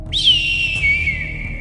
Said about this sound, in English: As you start doing that, you hear an eagle cry.